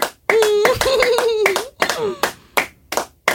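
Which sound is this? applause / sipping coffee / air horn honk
applause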